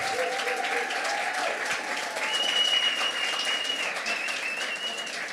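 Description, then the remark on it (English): A church audience gives sustained applause for a couple being brought onto the eldership and pastoral team. Many hands clap at a steady loudness throughout, with a few faint whoops and tonal cries rising above it. “From the applause, we all know that there's the commendation.”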